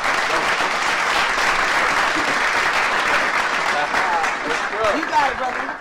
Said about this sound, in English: Hey, y'all clap more.